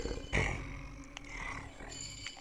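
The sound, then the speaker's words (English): Low, rumbling growls and grunts from bear-sized, wolf-like lizard creatures with shark fangs, deep green scales, tufts of blue fur and spiked tails, apparently eating; continuous, with a louder snarl near the start and wet, chewing-like textures mixed in. “The grumbling sounds continue. It seems that they're eating.”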